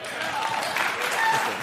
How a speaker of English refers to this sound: You weren't expecting that, were you? They just love to applaud.